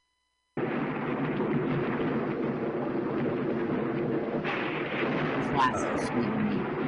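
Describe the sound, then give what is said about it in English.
A thunderstorm fills the air with a deep, continuous rumble of thunder and a steady wash of rain, loud and unbroken after a brief moment of silence at the start. “Yeah, you're just going to hear a thunderstorm, Mike.”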